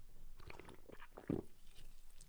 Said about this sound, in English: Wow, this is so, so carbonated. In fact, it's low carbonated, but it's making me burp. One more sip.